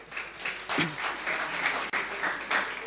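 A group of people applauding a person who answered a quiz question correctly, a steady crackle of many hands clapping at once for about three seconds, with a faint voice briefly audible in the mix.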